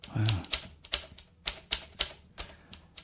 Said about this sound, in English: That sound is coming from the typewriter on the desk.